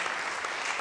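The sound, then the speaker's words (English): A steady wash of audience applause, many hands clapping together at once, dense and continuous with no pauses, moderately loud. “So just give him a big round of applause for that.”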